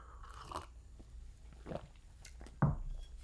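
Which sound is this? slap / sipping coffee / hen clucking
sipping coffee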